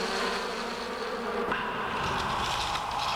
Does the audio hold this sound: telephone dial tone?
no